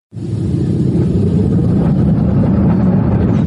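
A car engine rumbles loudly and steadily, its deep, heavy drone starting abruptly and holding at a constant level with a slight upward rev, with no voices.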